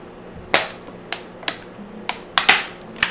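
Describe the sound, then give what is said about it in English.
A bottle is handled and popped open for a sip, giving a string of eight or so sharp, crisp clicks and pops at an uneven pace, with no one talking. “Y'all need to be hearing that bottle popping y'all ear.”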